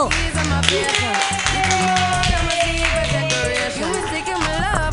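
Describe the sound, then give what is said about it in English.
Steady, loud audience applause welcoming a comedian to the stage fills the whole stretch, a dense wash of clapping mixed with music underneath, with no clear break or drop in level. “Clap your hands wildly for Greg Gettle.”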